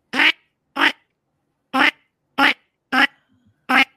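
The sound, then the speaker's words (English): A person imitates the call of redhead and canvasback diver ducks, as used when hunting them from a hide out in the middle of a lake, with six short, raspy, nasal bursts in an uneven rhythm, fairly loud, with brief silences between them. “And then when the dipper ducks went through, and you're out in the middle of the lake, and you're hiding for the diver ducks, the redheads and the canvasbacks, they had a different call. Their call was something like this.”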